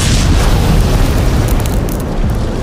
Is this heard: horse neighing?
no